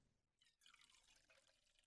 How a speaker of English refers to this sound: And then I hear this noise again. I'm like, what is that going on? I'm like, it almost sounds like something is pouring out. Kind of like this.